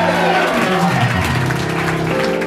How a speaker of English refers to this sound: Go ahead, take 15 seconds and give the Lord the biggest hand clap.